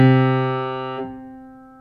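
A low C on a piano sounds loudly and then is cut off about halfway through as the finger is lifted, leaving the C one octave higher, whose key is held down silently with its damper off, ringing on by itself as it slowly fades.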